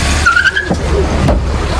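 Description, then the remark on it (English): A car's tires let out a short, high squeal as it peels out when the driver slams down the accelerator, over a steady roar of engine and road noise that continues after the skid fades. “You'll hear the car peel out and then you'll hear the thump of her being hit.”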